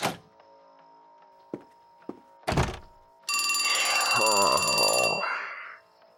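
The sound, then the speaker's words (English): A few dull knocks and thumps, then a loud, brassy telephone bell rings in one sustained burst of about two seconds, with a voice murmuring underneath as it fades. “I swear to fuck, one of these days I'm gonna bolt that door shut, unplug the phone, and just take a nap for a change.”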